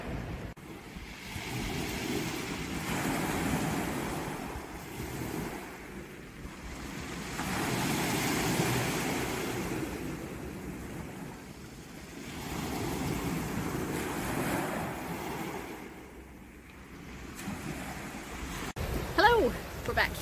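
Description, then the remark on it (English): Waves wash onto the beach at St Bees, near Whitehaven, in a steady, roaring rush that swells and recedes every few seconds, with wind gusting across the microphone throughout and a brief rustle at the very end. “So I am now still on the beach, but I'm on kind of the opposite side of the beach.”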